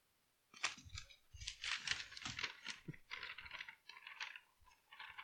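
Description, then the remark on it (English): Pages of a Bible rustle and flick in a quick run of crisp, papery swishes and crinkles as someone turns to Psalm 19, continuing steadily for several seconds with no talking. “Verse 1, as my Bible's loading, as I'm turning the pages.”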